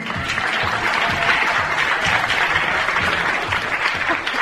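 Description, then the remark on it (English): The studio audience of the quiz program Yes, You're Wrong applauds steadily as the host is introduced, a dense wash of many hands clapping loud for several seconds, with a faint voice or two buried beneath the clapping. “There is no more fun than cueing your own applause, which is what I just did.”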